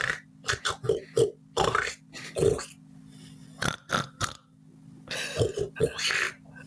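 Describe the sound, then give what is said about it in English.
A person imitates a baby pig talking in pig talk to its mother before being separated from her, with a quick series of short, throaty grunts and snorts, some bunched in rapid bursts, others spaced apart, with a low steady hum underneath. “I'll play the baby pig. You play the mother pig. And the rules are we can only talk in pig talk.”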